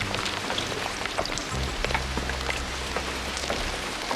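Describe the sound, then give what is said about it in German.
Steady rain falls and patters on a hard surface, a dense, continuous hiss with scattered sharper drops, with a faint low rumble underneath and no voices. “Ob der Regen auch mal wieder aufhört?”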